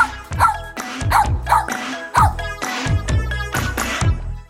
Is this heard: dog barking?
yes